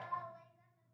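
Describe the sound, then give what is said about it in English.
A single voiced bark imitation from a child, a short throaty "woof" that starts sharply and trails off over about a second, fairly quiet. “Can you give me a bark? That was a pretty good one, yeah.”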